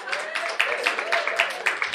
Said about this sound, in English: Your applause warms my heart. Thank you.